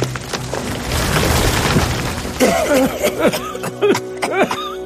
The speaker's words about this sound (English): Then he and the toy maker ran from the forest, just as a flaming branch crashed to the ground.